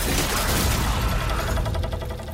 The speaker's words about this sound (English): Sending the old gentleman staggering backward an instant before the ribbon is cut, and the betusked whale comes crashing down.